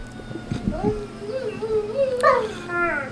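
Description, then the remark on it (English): A dog howls and whimpers in drawn-out, wavering whines that slide up and down in pitch, moderately loud, ending in a higher, sharper cry. “It wouldn't be a podcast without a dog in the background.”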